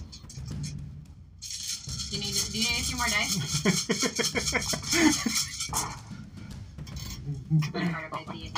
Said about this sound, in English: Do you need a few more dice? Right there. 10. Everybody loves that sound.